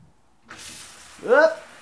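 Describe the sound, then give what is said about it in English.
A steady, bright hiss of water spraying from a shower with good water pressure runs for just over a second, with a short voiced vocal sound breaking in over the spray near the end. “Had a shower. Good pressure in this fucking shower. How may I demonstrate?”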